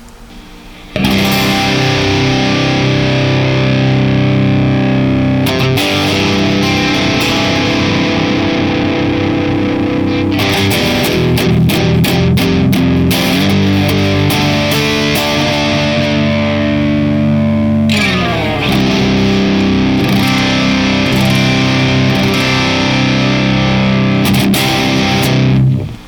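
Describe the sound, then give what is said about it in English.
A heavily distorted electric guitar played through a Cortex amp model plays chugging riffs and sustained chords, loud, with brief pauses between phrases and no voices. “Essentially, I'm expecting there to be more of a lower end present and a slightly more mid-range push, which will essentially give it a little bit more of a distortion, is what it sounds like.”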